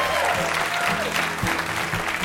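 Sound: audience applause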